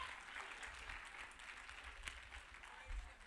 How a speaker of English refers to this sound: Praise the Lord. That's a good place to clap.